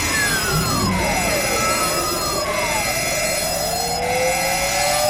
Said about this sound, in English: Shut the damn alarm off!